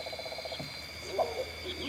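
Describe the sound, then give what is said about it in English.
A wompoo fruit dove gives a brief, deep, hollow hooting call, set against a steady background chorus of frogs and insects. “There's the wompoo again.”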